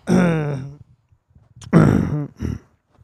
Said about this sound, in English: What the fuck was that? I had to clear my throat.